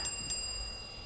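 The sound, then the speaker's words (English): A small, high-pitched bell sound effect from a website chimes twice in quick succession, its bright ringing tones lingering and fading. It's fairly quiet, with no talking. “Hey, I like the little bell sound.”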